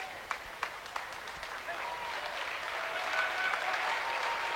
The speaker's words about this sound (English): And coming into the game is Benjamin Short, the 6'1 senior. Gets a nice round of applause as he comes onto the floor for Kenyon-Wanamingo.